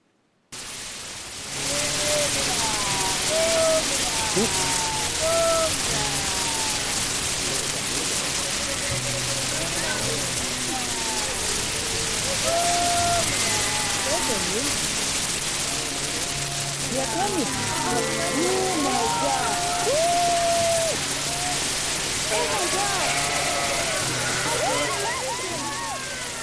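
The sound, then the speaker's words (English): A farmer calls to his sheep in the pasture in long, wordless hollers while many sheep bleat back in overlapping waves, all over a constant rushing, hiss-like background of wind or rain. “Then the farmer steps in, and this is the farmer making his call.”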